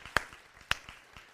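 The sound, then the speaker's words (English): A handful of sharp, scattered claps from an audience: two loud cracks stand out, with a few fainter claps spaced unevenly between them, and no talking. “Can I get some clapping on that?”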